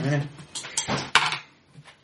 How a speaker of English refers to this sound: Dice. Yeah. So you get I rolled two fives plus the plus two with the prepared, which put me up to 12.